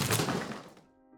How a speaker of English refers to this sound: I kicked down the door without warning.